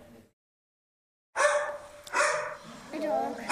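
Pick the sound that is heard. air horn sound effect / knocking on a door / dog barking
dog barking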